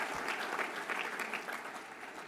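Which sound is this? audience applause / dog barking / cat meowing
audience applause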